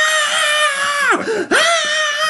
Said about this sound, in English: Just screaming.